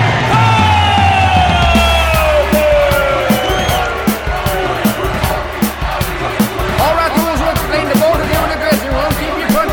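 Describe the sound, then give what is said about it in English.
A boxing arena crowd yells and roars loudly and continuously for about ten seconds as undisputed welterweight champion Killer Kareem is introduced, with rising and falling shouts, whoops and scattered sharp claps layered through the din. “No doubts, forget about the crowd, and forget about my father.”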